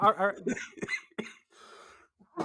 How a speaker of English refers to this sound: And we'd be laughing so hard that you'd be coughing like that the entire time.